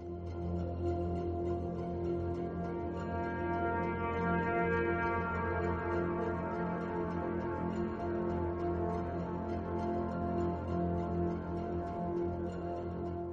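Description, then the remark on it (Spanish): An air raid all-clear siren, signalling the end of the alarm after a night bombing raid over a burning city, holds one steady, unwavering tone, rich and droning, sounding loud and continuous without rising or falling for the whole stretch. No voices are heard. “Y entonces, inesperadamente, un agudo alarido atravesó el rugir de las llamas. Nos miramos unos a otros, incrédulos. Todo había pasado. Era la señal de fin de alarma.”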